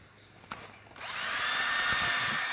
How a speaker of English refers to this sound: So I'm going to find a place where the two holes kind of line up, more or less. Drill a hole on one side. Drill a hole on the other side.